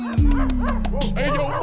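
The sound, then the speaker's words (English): Small poodles bark and yip outside a door in a rapid, overlapping flurry of high-pitched yelps, fairly loud, over a steady low droning tone. “You got these dogs out here. They about to bite me poodles.”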